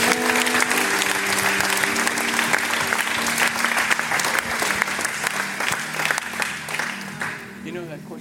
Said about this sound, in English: Do you receive God's word today? Clap your hands.